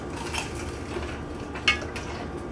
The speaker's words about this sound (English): All right, and we're done with the plating. And I just want to take a quick bite so you can hear just how crunchy this is.